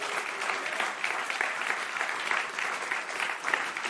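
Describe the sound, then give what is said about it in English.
An audience claps their hands for God during the offering in sustained, dense applause, many overlapping claps forming a steady wash of sound from a sizable crowd, even in volume. “Give the Lord a clap kom op, offering. Geef God een applaus.”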